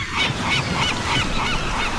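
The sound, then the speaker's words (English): Seagulls squawk over and over in a noisy chorus, harsh overlapping cries repeating steadily at a loud level with a rough background wash and no talking. “was it you or was it me that wore the great hat, Damn Seagulls?”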